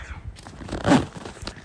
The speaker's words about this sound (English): Let me zip this shit up, bitch. Let's see.